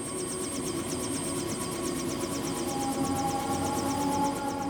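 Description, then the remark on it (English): A hijacked helicopter hovers in place at a prison, heard from the ground, its rotor beating in a fast, steady rhythm over a constant engine drone, with no rise or fade as it holds its position. “And I hear the chopper, the rotor, in place. It's not moving.”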